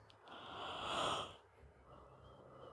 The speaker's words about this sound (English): As you take a long, self-indulgent yawn to ponder it. Self-indulgent yawn. Because I feel like you really milked it.